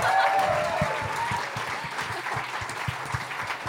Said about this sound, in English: Thanks for coming out, Brisbane. Can we get a round of applause to everyone here at the Haya Bar?